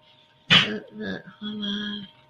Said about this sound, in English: There it is. Bless you, doggies are sneezing.